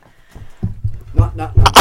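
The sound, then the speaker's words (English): A microphone gets knocked over and breaks, the second time it has been broken, with a series of low, muffled thumps building into sharp, loud clattering bangs at the end. Voices can be heard mixed in with the knocks. “Oh, there goes the mic, and there goes the... Broken the mic twice now.”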